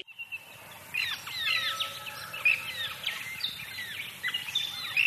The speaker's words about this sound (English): The bird songs were from … by … and from my Canberra backyard.